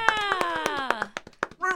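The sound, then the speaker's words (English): A person mimics an air horn with a loud, buzzy, sustained vocal blare that slowly drops in pitch, while quick rhythmic claps or taps punctuate it, followed by a few short bursts. “Was that your air horn impersonation?”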